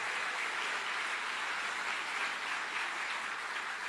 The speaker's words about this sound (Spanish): Lo impresionante entonces, denle siquiera un aplauso a nuestro Dios.